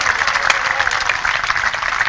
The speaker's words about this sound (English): God bless you so much for opening the gates of Biriwa to us. Amen. Clap for them one more time.